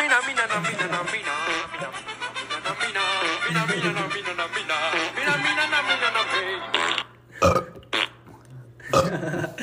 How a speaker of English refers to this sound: Got to complete it with a burp.